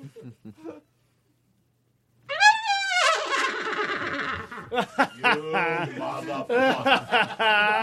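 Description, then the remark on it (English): A voice imitates a horse whinny, a loud, high, quavering call sliding downward for about two seconds after a brief silence, then breaking into rapid talking or chuckling. “Every fucking time you make that horse sound doesn't mean I like it.”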